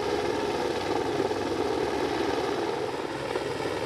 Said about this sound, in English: Before a chopper was brought in to long line them out.